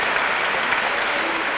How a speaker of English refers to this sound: Applaud the poet.